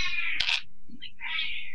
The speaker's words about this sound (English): Really? I hear your cat. That's awesome.